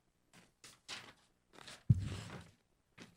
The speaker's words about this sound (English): Sorry for chewing into the microphone. Yeah, that's I'm a professional. I put mine aside till after the podcast.